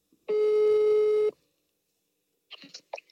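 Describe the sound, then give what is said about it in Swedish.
A single steady telephone ringing tone sounds for about a second while placing a phone call, clear and fairly loud, followed by a pause and a few brief, faint clicks and rustles. “Okej, då tycker jag att vi ringer upp.”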